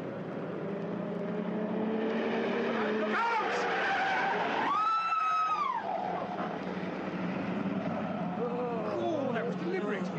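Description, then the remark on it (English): A car roars past at speed without braking, its tyres squealing in a long, high skid as it swings round a corner, with engine noise filling the scene and voices faintly underneath. “He came round the corner like a flipping rocket. He's never even put his blinking brakes on.”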